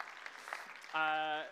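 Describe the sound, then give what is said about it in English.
An audience claps and cheers for the speaker's wife in a dense, busy wash of sound, then a loud, sustained voiced cheer rises over it near the end before fading. “We can give her another cheer.”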